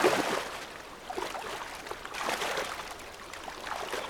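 flowing river water

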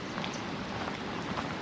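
rain falling

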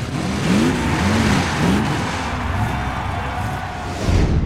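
monster truck engines revving

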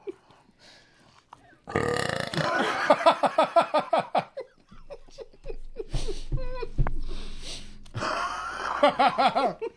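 loud burp

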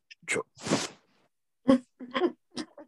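sneeze

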